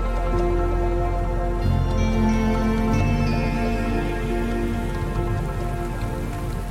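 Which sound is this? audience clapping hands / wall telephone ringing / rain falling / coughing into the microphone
rain falling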